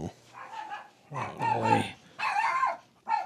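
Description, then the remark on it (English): A dog barks in four drawn-out, slightly whiny bursts, fairly loud, with short pauses between them and no talking. “Somebody's barking.”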